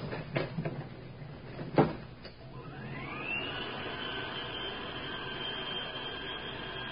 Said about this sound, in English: Get in the elevator. Okay. It's a tight squeeze, but I think we can make it. There we are. All right, Inspector. Close the door and take us up. Right.